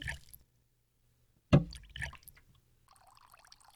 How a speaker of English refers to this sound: So that centaur over there, his only purpose is to pour water into that bucket over and over again. What? Is the pouring of the water supposed to be soothing?